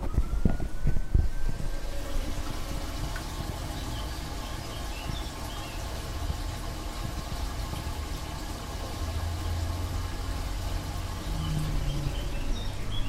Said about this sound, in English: Back out again, and the actual water you can see is flowing freely from, I mean, it's the spring, it's the actual spring. You can see that this is just an opening, that you access to the earth and rocks, sort of natural earth and rocks below it.